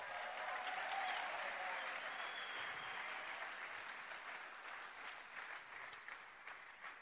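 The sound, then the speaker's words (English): A crowd applauds the standing first-year students steadily for about seven seconds, a dense, even wash of many hands clapping that stays loud throughout and fades slightly toward the end. “Let's give them a round of applause, man.”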